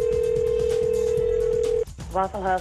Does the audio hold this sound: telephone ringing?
yes